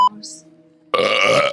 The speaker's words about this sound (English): That should be our beep sound. Just a loud burp.